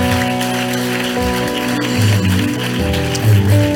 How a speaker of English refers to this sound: Let's bless God for every leader that is seated over here. Clap your hands for everybody.